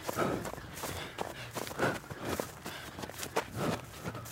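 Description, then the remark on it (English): Steady running footsteps land in a quick, even rhythm, with soft breathy exhalations woven between the strides, the breathing paced two breaths in and two breaths out to match the feet. No one speaks. “See, it's all breathing and feet. They all go together.”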